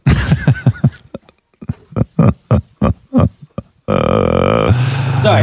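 A dog whines in a quick series of short, grunting vocal bursts, pauses, then lets out a long, steady, tonal whine that holds loudly to the end.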